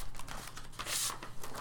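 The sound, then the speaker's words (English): Paper rustles and crinkles in short, uneven bursts as sheets are shuffled through while searching for Bear's paper, with one louder crumpling swish midway. Quiet, with no talking. “Where is Bear's paper? Is it in here?”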